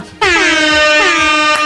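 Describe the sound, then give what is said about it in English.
A loud, blaring air horn sound effect fires off several times in quick succession as an air horn button is clicked repeatedly, the blasts overlapping into one continuous, brassy wall of honking with no voices. “Where did you find all those air horns at once? That was me clicking it at multiple times.”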